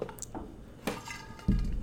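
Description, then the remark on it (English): Glasses clink together in a toast, a couple of short, bright taps, with faint liquid and handling noises and a low bump near the end. No one speaks. “Cheers.”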